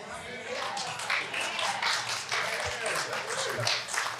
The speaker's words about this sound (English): Now, you're clapping now, but that means you got to help pull the weeds, and you got to help pull the rocks out, and you got to help work the thing.